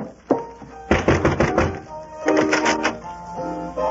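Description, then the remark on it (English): Knocking on a cabin door: a single rap, then bursts of quick repeated knocks in two clusters, heard over a steady tonal melody playing underneath. “I'll go up and knock on the door here.”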